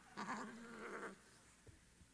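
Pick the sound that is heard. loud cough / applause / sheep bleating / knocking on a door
sheep bleating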